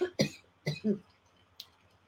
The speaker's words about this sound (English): Sorry about that. I'm still recovering from COVID a little, and I still tend to have a cough.